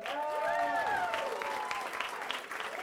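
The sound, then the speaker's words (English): Audience applause for the cast of Death Valley Scotty at an IOU Theater presentation by the Metabolic Studio, on a drizzly night: steady, dense clapping from many hands throughout, mixed with a few rising and falling cheering voices in the first half. “Let's hear it one more time for the Death Valley Scotty cast.”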